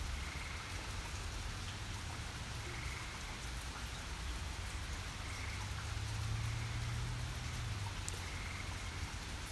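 Steady rain falling in a park hisses continuously across the whole clip, a dense even patter with a low rumble underneath and faint periodic chirps or croaks repeating in the background; no voices.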